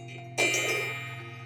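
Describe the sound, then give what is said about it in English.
A meditation bell is struck once with a bright, sudden attack, then its shimmering metallic tone rings on and slowly fades over a steady low hum. “I'm going to first ring our bell just to get us into the present moment.”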